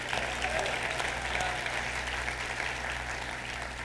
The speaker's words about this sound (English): Can you clap your hands and say, praise the Lord?